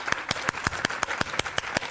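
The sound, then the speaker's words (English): An audience claps hands together in a steady, even rhythm, about eleven sharp, loud claps in under two seconds, with no voices on top. “My wife, I'm gonna wait while you clap your hands.”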